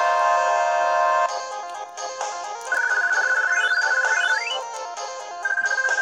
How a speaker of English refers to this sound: Whoa, there's an alarm.